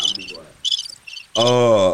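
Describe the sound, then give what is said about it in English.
Crickets chirp in quick, high-pitched bursts, several pulsing trills, before a louder, sustained droning tone abruptly takes over near the end. “I know you can't hear this, but you are getting crickets.”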